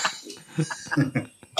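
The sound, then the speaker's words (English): Someone coughs and sputters in a rapid string of harsh bursts, ending with one sharper hack, after a bit of egg went down the wrong way. “Bit of egg gone down the wrong way.”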